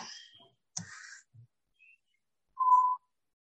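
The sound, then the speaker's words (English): A parrot squawks in a few short, harsh bursts, then gives a clear, steady whistle, moderately loud, with quiet gaps between calls and no talking. “Someone have a bird, a parrot.”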